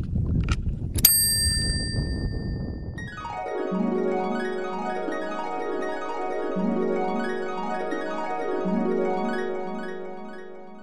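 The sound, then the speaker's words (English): A single bright bicycle bell ding cuts through rumbling wind noise during a walk in the Birkdale Ravine, then gives way to a long, sustained ringing tone that swells and pulses steadily until the end. “Ding dong. I got no bell.”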